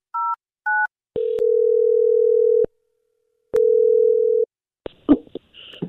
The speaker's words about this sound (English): Well, I'm going to dial her phone number right now and see if we can figure out why she's not calling you back, okay?